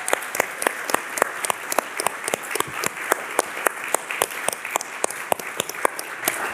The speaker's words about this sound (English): can you just give them a round of applause just for all the hard work they do?